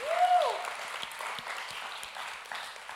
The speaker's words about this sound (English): I think that's a clap. That's a good song.